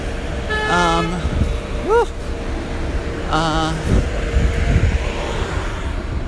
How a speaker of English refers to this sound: We have some traffic, it's rush hour as I cross town.